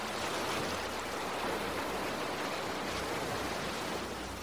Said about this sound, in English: You are inside the treehouse, in the middle of the ocean again as the waves lap outside.